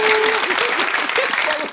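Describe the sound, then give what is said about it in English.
A group of people claps steadily in a dense, continuous burst of applause that stays loud throughout, with a few voices calling out underneath. “Can we get a motherfucking set of claps”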